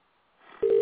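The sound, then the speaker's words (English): A soft line hiss swells, then a loud, steady telephone tone cuts in at a single mid pitch as a call is placed. No one speaks. “Let's try to see if this goes through.”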